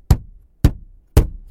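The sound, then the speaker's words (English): A hand strikes a car dashboard three times at a steady, unhurried pace, each hit a loud, dull thump with a short hollow decay. No one speaks. “Hitting the dashboard.”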